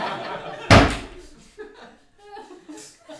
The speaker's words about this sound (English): That was both the chest slamming shut and decency closing its door on the proceedings.